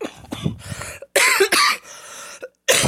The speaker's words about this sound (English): Excuse me. Still not through the cough.